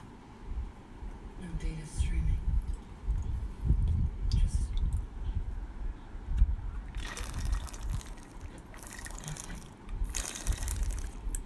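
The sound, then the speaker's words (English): Water pours in a few hissing, splashing bursts, followed by quieter sounds of drinking, over a low background murmur. “Sorry for the water. Gotta stay hydrated.”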